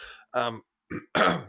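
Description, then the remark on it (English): Someone clears phlegm from their throat in a series of harsh, phlegmy bursts, three or four rough hacks separated by short pauses, with no talking. “There's so much phlegm in my throat right now.”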